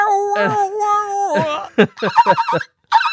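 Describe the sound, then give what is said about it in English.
A talk box (voice box) guitar solo mimics animal noises: a long, bright whinnying tone that bends downward, followed by a rapid series of choppy, yelping bursts after a short gap. “where he does the voice box rah, rah, with it, and he makes like animal noises with the voice box.”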